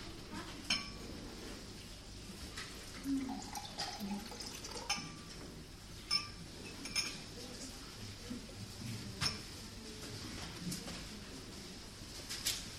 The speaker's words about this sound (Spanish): Va a tomar un poco de agua.